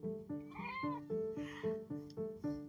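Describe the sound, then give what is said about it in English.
A tabby cat meows, a quick string of insistent, tonal cries repeating in a steady rhythm about twice a second, with no voices alongside. “Hello, my cat just jumped in my face.”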